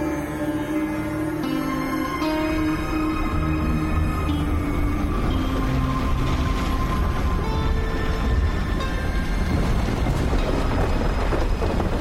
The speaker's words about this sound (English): This rain's really coming down.